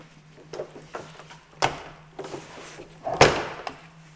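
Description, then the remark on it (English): A heavy door is pushed shut, with scattered wooden clunks and two loud, booming thuds a couple of seconds apart over a steady low hum. “And when the doors are closed in here, we can close one.”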